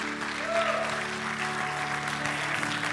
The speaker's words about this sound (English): Let's go ahead and give the Lord just a hand clap this morning.